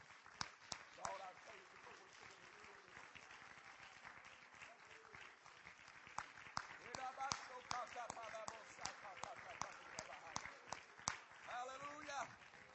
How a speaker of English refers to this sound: God, grant us this day a move of the Holy Ghost, and we clap our hands and give the Lord praise this morning.